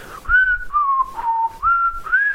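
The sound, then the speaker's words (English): A person whistles a short, eerie melody alone, meant as the X-Files theme tune, a few sustained notes stepping down and back up, fairly clear but slightly wavering in pitch, with no talking. “That is supposed to be the X-Files theme tune, whistled badly.”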